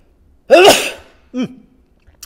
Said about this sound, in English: Bless me. I don't know what it is about giving talking and sneezing, but whatever.